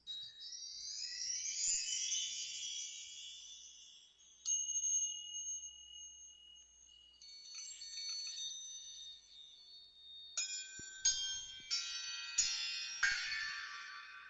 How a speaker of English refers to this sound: All right, so I have any amount of different chime notes, like.